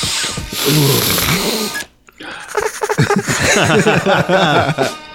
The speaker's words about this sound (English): Yeah, sniffing.